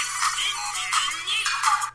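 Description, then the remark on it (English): A bright electronic phone ringtone plays on its own, looping a high, busy melody in short repeated phrases, fairly loud, with no one talking. “Just as a quick side note, this is my current ringtone.”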